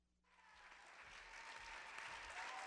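Audience applause starts abruptly and builds into a dense, steady wash of clapping that grows slightly louder and fuller over a few seconds, with no voices standing out.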